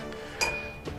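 A single bright clink of a glass of whiskey being knocked, with a clear ringing tone that sustains and fades over most of a second. Fairly crisp, with a soft bump at the end.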